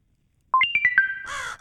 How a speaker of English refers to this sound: We got our notification for the Audience Choice Awards.